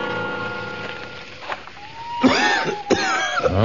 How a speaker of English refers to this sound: cough's getting worse